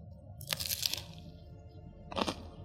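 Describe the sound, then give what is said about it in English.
Two loud crunches from biting into a crisp BLT sandwich, one lasting about half a second and a second shorter one a little over a second later, with no talking. “Ooh, good crunch, big.”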